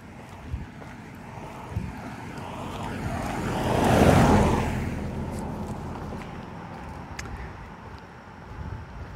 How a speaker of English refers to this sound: It's a air car coming. Look at the woods while the car passes by.